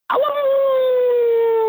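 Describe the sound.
A person imitates a wolf howl with one long, loud, sustained tone that starts with a rough rising onset and then holds steady, slowly sliding lower in pitch.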